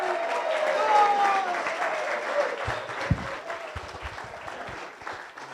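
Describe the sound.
An audience at a Las Vegas Rotary meeting applauds steadily for several seconds to welcome a speaker, a past club president, a dense wash of clapping with a few faint voices and cheers mixed in as it gradually tapers.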